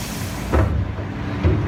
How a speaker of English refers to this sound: Oh, I can't reach. I'll get my crane truck to put blocks up top. Okay. All right, just backing it up, backing it up.